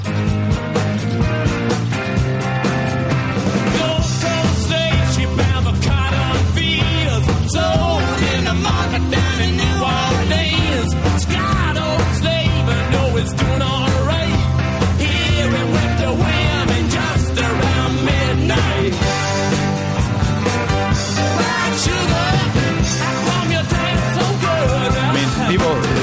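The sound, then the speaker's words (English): A loud, driving rock song plays without a break, with chugging guitars, steady pounding drums, bass and a shouted lead vocal over a dense, bright mix. “I'm going to play this song”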